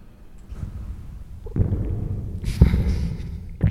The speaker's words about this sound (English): How do you get the big gulp sound?